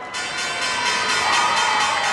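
A stock exchange opening bell rings loudly and continuously at the New York Stock Exchange in 2011, a rapid metallic clatter held steady for a couple of seconds, with faint crowd cheering mixed underneath.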